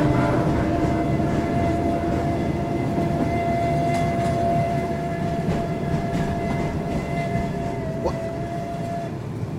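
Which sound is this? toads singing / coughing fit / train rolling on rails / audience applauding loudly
train rolling on rails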